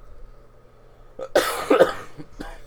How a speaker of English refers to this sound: All right, before we cough our heads up and hack up anything else in your guys' ear